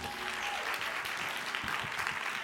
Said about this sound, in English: Y'all clap it up for my volunteers.